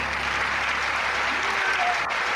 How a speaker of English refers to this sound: So ladies and gentlemen, without further ado, please, a nice big round of applause for our guest tonight, 1, 2, 3, 4,